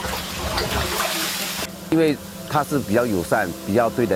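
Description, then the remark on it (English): A steady hiss of a sprayer misting a solution of 20 kilograms of urea and 5 kilograms of salt in about 200 liters of water fills the first second and a half, then cuts off as a person begins talking. “You just spray until everything is covered in salt.”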